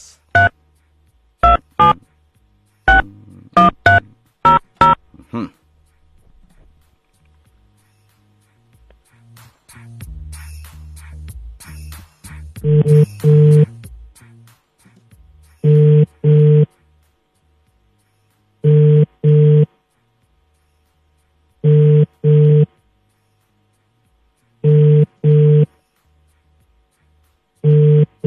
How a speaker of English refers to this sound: Answer your phone, Father.